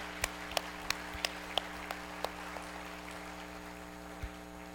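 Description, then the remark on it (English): A sparse round of applause at a church service, thanking the Sea Cadets for helping with a ceremony: a handful of faint, evenly spaced claps over a steady low hum, tapering off after a couple of seconds into quiet background. “Can we just give them a thank you?”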